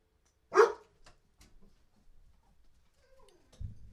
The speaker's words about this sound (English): And now this brief intermission for barking dogs.